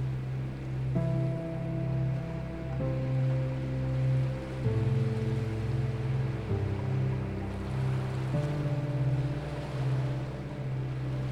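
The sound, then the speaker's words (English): Ocean waves wash steadily onto a shore in a soft, continuous hiss that swells gently, beneath a sustained, mellow musical drone whose chords shift slowly. No one speaks. “As you breathe in with the waves of the ocean rolling onto the shore.”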